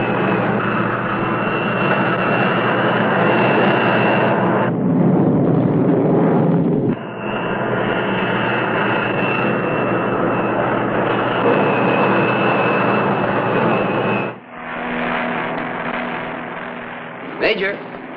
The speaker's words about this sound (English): United States Air Force tests its hottest aircraft, the jet-powered X-planes.